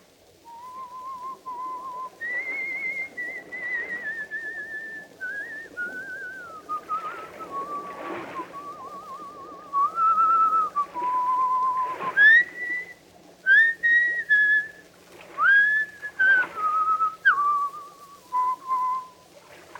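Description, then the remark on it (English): Someone whistles a slow, lilting folk melody, with held notes and gliding pitch changes. The whistling is clear, with no talking, over a low steady background hum. “He will pass the word Blackstone and whistle Annie Laurie.”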